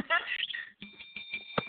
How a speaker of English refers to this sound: You know, I meant to tell you I love that damn bell. So be ringing it for me. Ring that bell. Ring that bell. Not everybody like that bell, though.